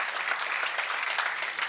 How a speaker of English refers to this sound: Oh, give the Lord Jesus a hand clap of praise. He's worthy of it. Hallelujah.